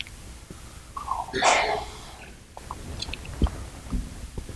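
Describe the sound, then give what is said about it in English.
A sharp, fairly loud sneeze bursts out among listeners during a morning sermon, followed by scattered soft clicks, rustles and faint throat noises from the listeners, with no talking. “Wish we had as many amens as we do sneezes and coughs this morning.”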